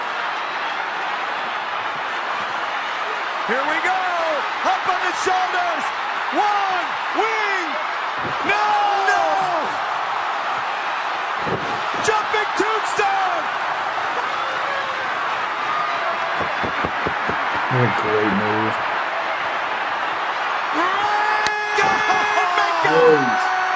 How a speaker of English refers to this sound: Some of the loudest you'll hear that Tokyo Dome crowd.